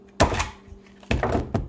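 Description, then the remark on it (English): Ice being taken from a freezer: a heavy thunk with a brief clatter, a quiet pause, then a second rattling clunk, all over a low steady hum and with no one speaking. “But anyway, what I'm going to do is get the ice out.”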